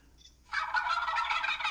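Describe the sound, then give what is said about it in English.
A turkey gobble bursts in after a brief quiet moment, a loud, rapid warbling rattle that holds steady for over a second with no talking over it. “I got to do the gobble thing again one more time”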